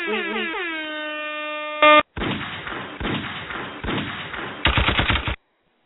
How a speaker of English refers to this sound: You heard the gunshots.